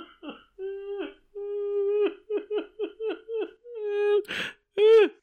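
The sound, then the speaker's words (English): A person mimics a seagull with a run of nasal, wavering cries: a few long wails, then a quick series of short rising-and-falling yelps, ending in a harsh squawk and a final bright cry. “Now you sound like a seagull.”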